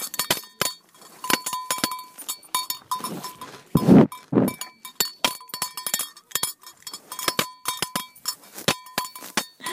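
A cow munches grass in a forest alongside other cows also eating there, recorded while walking through the forest, with steady crisp crunching and tearing and bright metallic clinks like a bell ringing throughout, plus a brief louder low rumble midway. No one speaks.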